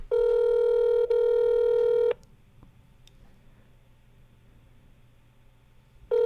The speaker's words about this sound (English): So, hopefully, he picks up. It's Oh, it's ringing. Do you hear that in your headphones? Yeah, I do.